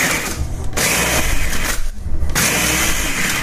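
A blender roars loudly and steadily as it chops a full container of ice again, some of it already crushed to snow, the motor grinding with a few brief dips in pitch and texture as the chopped ice churns. No voices.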